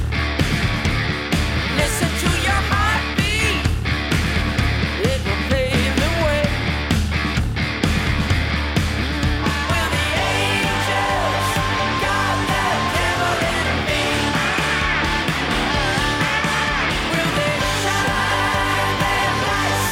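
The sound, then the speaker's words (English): Harsh screamed vocals ride over a loud, dense heavy metal track, an album's opening title track, with distorted guitars and pounding drums, the shouting sustained and raw throughout without any spoken words. “And then you have some nice screaming in there too.”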